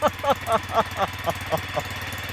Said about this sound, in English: I was a bit worried it didn't sound like a TukTuk. Right. I was just worried, like we were just talking about whether it sounded like a Subaru or a... It's a cross. Yeah. It's definitely a midlife crisis exhaust, I think.